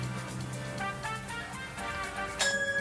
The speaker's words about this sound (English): The bell, you have to press it first.